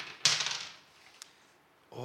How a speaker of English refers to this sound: Oh, I'm rolling a dice. 4 again.